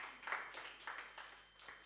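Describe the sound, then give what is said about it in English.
An audience claps together, a soft, steady wash of many hands striking at once with no voices over it, lasting under two seconds. “Let's clap hands for them one more time.”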